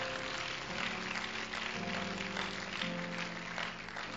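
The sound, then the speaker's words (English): A church audience claps their hands to God after a prayer, before being seated, in a dense, continuous wash of applause while sustained organ or keyboard chords hold underneath, the clapping loud and even throughout. “In Jesus' name, would you clap your hands to Him again before you're seated?”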